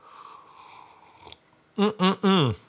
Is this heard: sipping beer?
yes